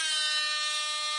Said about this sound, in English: I'm going to stop doing the air horn now. I need to respect Moussa more than signalling him in with an air horn.